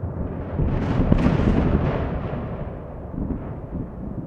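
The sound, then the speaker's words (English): A loud thunder crash during a late-night storm with rain and lightning in Langon, France, with a sharp crackling onset that swells into a heavy, continuous rumble lasting several seconds, deep and broad, slowly easing off without fully fading. No voices. “I count the beats between the sound and the flash.”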